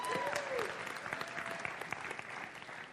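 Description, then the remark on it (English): Gentle, soft audience applause: a light golf clap for a man as he sits down, with a steady patter of many hands and a brief whistle-like tone rising over it early on. “Just gentle, nice little golf clap for Jordan.”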